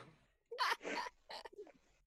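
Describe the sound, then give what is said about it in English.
A man coughs without covering his mouth in a quick series of harsh, breathy bursts, two strong ones followed by a shorter, fainter one, with no talking around them. “He's coughing without covering his mouth.”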